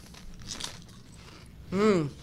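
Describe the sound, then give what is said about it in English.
A crisp crunch of someone biting into a potato chip during a chip taste test, a short crackly burst, followed by a brief voiced murmur. “It's a good crunch. It got good crunch.”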